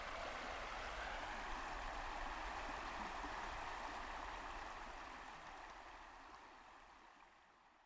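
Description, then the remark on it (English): A river flows steadily beside a hiker-biker campsite under a starry night sky, with a broad, rushing hiss of water that gradually fades toward the end, with no voices present. “Now we're here under an incredible view of the stars right alongside a river.”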